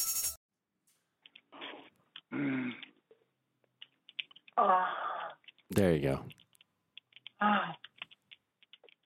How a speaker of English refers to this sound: One is typing.